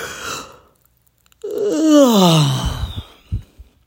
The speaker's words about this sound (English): And I'm going to yawn.